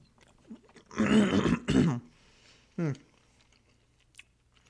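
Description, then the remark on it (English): Chewing of food, with two loud, wet bursts of mouth noise in quick succession, then a short throaty vocal sound and scattered quiet clicks. “The first fucking couple minutes of this. Just me chewing.”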